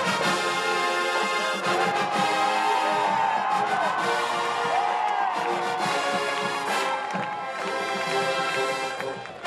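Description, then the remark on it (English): A marching band's percussion section pounds out a steady, loud beat as the band members march onto the field, while the crowd in the stands claps along to the beat, with cheering and whoops rising over the drums throughout. “The percussion section begins to play as the band members march onto the field. The crowd claps to the beat.”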